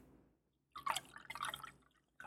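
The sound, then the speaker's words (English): Champagne pours into a glass, a bright fizzing, gurgling splash that swells for over a second, pauses briefly, then resumes, with no talking over it. “Dusty's pouring champagne”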